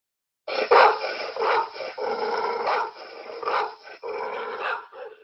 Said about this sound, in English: So I'm going to play a sound for you of a dog. I'm going to play you the sound and let's get your reaction.